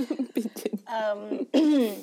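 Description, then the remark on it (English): A quick run of rough, raspy throat clearing and short coughs, followed by strained voiced sounds, like someone working to clear their throat. “Guys, I promise this cough is not corona related.”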